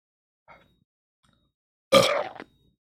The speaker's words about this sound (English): We will not finish the stream without me at least burping at least once. I'm gonna try. I think I burped earlier, but that's not good enough. We gotta do it.